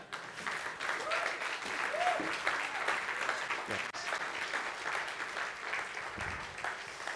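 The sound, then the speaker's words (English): A crowd claps steadily throughout, a dense, sustained patter of many hands at fairly even loudness, with a brief spoken word and some faint voices mixed in beneath. “They delayed for the applause.”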